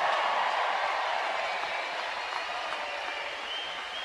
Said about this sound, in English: And finally, the passion of the place of Kansas State, our amazing band. Let's give our band an amazing round of applause.